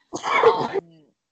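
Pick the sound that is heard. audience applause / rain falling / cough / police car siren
cough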